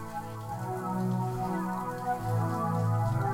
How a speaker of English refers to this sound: That's just the sound of gasoline hitting the sidewalk, splashing around my great-grandfather as he stealthily dodges it.